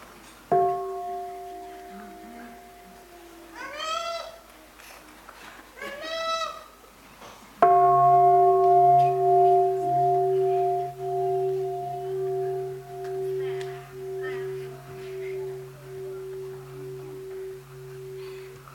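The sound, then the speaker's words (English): A deep bell is struck twice, each time ringing with a long, humming tone that slowly fades away, while faint bird-like calls chirp briefly in the background between strikes. “Now listen, let's listen to the bell and breathe.”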